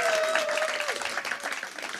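An audience applauds, a dense, steady patter of many hands clapping that holds at a fairly even loudness throughout, with a brief sustained tone sliding down near the start.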